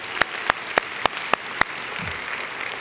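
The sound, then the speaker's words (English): An audience at Victory church, standing, gives the Lord a clap offering: six sharp, evenly spaced claps ring out in a steady rhythm over a continuous hissing wash of crowd clapping, which carries on after the beat stops. “Now, come on, give up a good hand clap for the Lord.”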